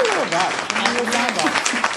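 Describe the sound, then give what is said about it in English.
A steady burst of crowd applause sound effect, dense and fairly loud for about two seconds, with voices cheering and whooping over the clapping. “Drum roll, clapping, booze.”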